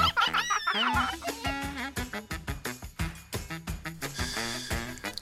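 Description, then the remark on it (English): A cartoonish voice of a mother character who has been turned into a chicken imitates a chicken, letting out a quick, rhythmic run of loud clucks and squawks over a busy, bouncy musical backing. “turning her dad into a donkey with a magical asparagus, turning her sister into a piglet, and his mom into a chicken.”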